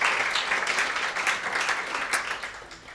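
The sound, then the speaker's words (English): A round of applause from a crowd: dense, steady crackle of many hands clapping for three seconds, fairly loud and even, easing off slightly toward the end with no talk over it. “I think it does deserve a round of applause.”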